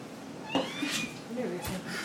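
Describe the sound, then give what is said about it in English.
A pet cat meows a couple of times, drawn-out rising and falling cries with a brief pause between them, fairly clear against a quiet background. “That is my friend, the cat.”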